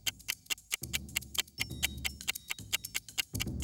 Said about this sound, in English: do you hear that ticking noise? I think it's coming from the Cyberman.